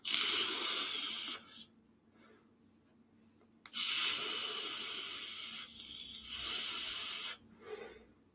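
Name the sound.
vape device hissing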